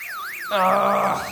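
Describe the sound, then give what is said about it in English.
A car alarm, set off as someone is breaking into the car, wails with its pitch sweeping up and down in a fast repeating warble. Halfway through, a steady buzzing, harmonic-rich tone joins in, and the combined sound turns louder. “I think someone's breaking into your car, Captain.”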